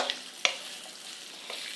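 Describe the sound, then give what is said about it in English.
Steady sizzling of food stir-frying in sesame oil, a broad hiss punctuated by a sharp clatter and a few crackling pops, with no talking. “You hear that sizzle? That sounds very good.”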